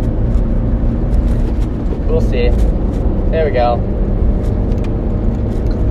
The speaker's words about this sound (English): And yeah, it's always a challenge passing a slow car on a back road. But we made it happen.